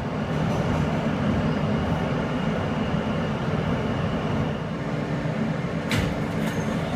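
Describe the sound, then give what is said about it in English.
A Brooklyn-bound F local subway train roars along the tracks between 23rd Street and 14th Street, a steady, loud rumble with a brief metallic clack near the end. No one speaks. “This is a Brooklyn-bound F local train via the E line.”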